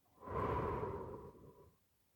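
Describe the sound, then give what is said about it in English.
A single slow, breathy exhale through the mouth during a guided breathing meditation, soft, swelling quickly then tapering gradually over about two seconds before fading into quiet. No speech. “Breathing in through our nose and out through our mouth.”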